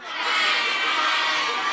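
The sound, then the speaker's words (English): A group of fourth-grade children shout and cheer together in a sustained, noisy burst, their voices imitating ducks cheering for other ducks playing soccer, loud for under two seconds. “Do you even know how to make the sound of ducks cheering for other ducks playing soccer?”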